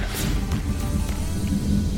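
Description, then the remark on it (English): A typical 3 o'clock Florida summer thunderstorm with steady rain: a continuous hiss of falling rain over a deep, low rumble of thunder that stays fairly even and loud throughout the short stretch, with no voices. “Y'all may hear that. We're having a thunderstorm right now.”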